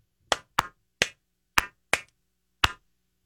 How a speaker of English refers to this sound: I just, you know, we just got to give these two a big round of applause. I will give them that applause. I'll give them a slow clap.